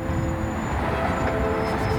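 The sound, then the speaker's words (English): A dense, steady roar of traffic on a highway of over 10 lanes, towards rush hour on a Friday, a continuous low rumble with a faint whine on top, holding at a constant loud level throughout with no voices. “So we're over 10 lanes of traffic. It's getting towards rush hour on a Friday, yeah.”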